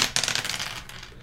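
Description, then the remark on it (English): Dice of different colors are rolled across a hard tabletop during a game, clattering in a quick burst of sharp clicks, rattling fast at first and then settling and fading within about a second. Nobody speaks. “So you roll the dice in front of yourself, subtract whichever color is lower out of whichever color is higher.”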